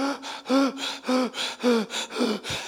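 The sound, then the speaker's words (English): About six sharp, gasping breaths in quick, steady succession, loud, with a slight voiced catch on each inhale, like someone heavily out of breath. No talking. “I mean, the only time we notice breathing is something unusual happens.”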